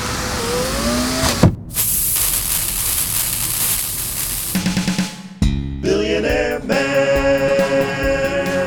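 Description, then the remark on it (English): A car engine revs up with a rising pitch as the car picks up speed, then gives way to a loud, sustained rushing hiss, followed by a busier burst of mechanical and tonal sound effects. No one speaks. “And their car is picking up speed.”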